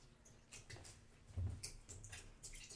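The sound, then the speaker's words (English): Liquid pours quietly onto the ends of a new glass dish, with soft, uneven trickling and a few faint splashy ticks over a low background hum; no one speaks. “Pouring on now at the ends.”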